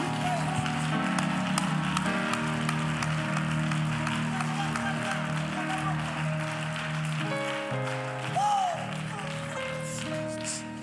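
A church audience claps hands loudly and continuously for the Lord, a dense, rapid patter of many hands over a steady tonal hum, with sustained music-like tones and voices blending underneath throughout.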